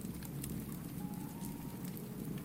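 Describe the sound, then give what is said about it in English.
A wood fire crackles steadily, with scattered sharp pops and snaps over a low, constant rumble. It stays fairly quiet and continuous, with no voices. “Deep in the belly of the fire, you see the wood splintering and crackling.”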